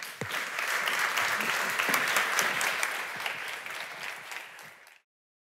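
An audience applauds steadily, a dense wash of many hands clapping at once, holding a fairly even level for about five seconds before fading and cutting off.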